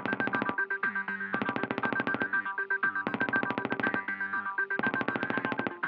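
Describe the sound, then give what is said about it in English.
A rapid, rattling 'machine gun' heartbeat design, a programmed Ringo brand heartbeat sound effect, fires in machine-gun bursts of fast staccato pulses, alternating with brief warbling electronic tones, repeating steadily and loudly with no voices. “You can choose from among dozens of designs, like the machine gun,”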